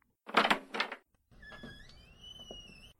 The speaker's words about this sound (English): I'll open the door.